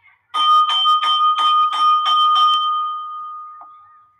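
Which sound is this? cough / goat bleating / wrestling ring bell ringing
wrestling ring bell ringing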